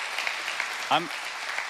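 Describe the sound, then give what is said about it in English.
A crowd applauds steadily throughout, a dense, even wash of clapping, with one voice briefly calling out over it near the middle. “Yeah, we should clap for that too.”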